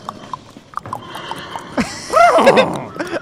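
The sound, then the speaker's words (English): Horse sound effects: a loud, wavering whinny rises and falls in pitch after a run of soft hoof clops and rustling, then a few quieter clops follow. “And there's horse sounds playing over this part.”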